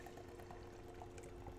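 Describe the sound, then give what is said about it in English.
Golden beer pours from a can in a steady stream, with a continuous fizzy gurgle and small bubbling pops throughout. The sound is fairly quiet, and no one speaks. “It looks like you went to a dive bar and poured a beer.”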